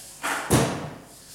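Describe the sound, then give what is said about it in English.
A single heavy thud as a wooden chair is set down firmly on the floor, preceded by a brief scraping rustle and followed by a short fading resonance. “So I've given you this chair.”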